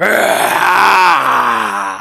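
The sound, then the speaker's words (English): A man's voice imitates the loud, sustained roar of a Goliath, a deep, harmonic bellow that holds steady for about two seconds before tapering off slightly at the end. “roar, this loud Goliath roar.”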